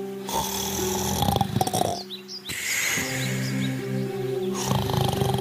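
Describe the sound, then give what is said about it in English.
A wolf snores loudly in slow, rumbling, drawn-out breaths that repeat steadily as it lies sleeping under a tree in a yard, while birds chirp faintly in the background. No one speaks. “The wolf lay under a tree on the yard and started to sleep, snoring.”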